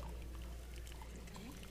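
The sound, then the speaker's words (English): Hot, steaming water pours steadily in a continuous trickling stream, fairly loud, with a low background rumble and no voices. “It's trickling out.”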